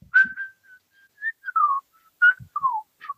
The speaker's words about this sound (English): It's Jingle Bells. That song rules to whistle.